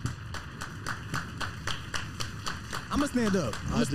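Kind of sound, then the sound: crowd, hand clapping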